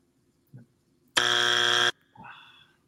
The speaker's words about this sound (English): Strike two. Did the buzzer come in on that, or is it just in my laptop?